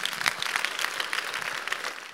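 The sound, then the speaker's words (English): An audience claps hands together for the Lord during a sermon in a dense, continuous burst of applause, many overlapping crisp claps at a steady moderate level with no voices. “Give the Lord a clap of hands.”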